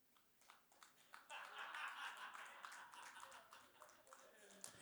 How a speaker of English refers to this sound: That was what I call a golf clap. Are we meant to clap now or throw something?